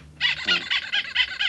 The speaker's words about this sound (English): There you go. Little rubber duck.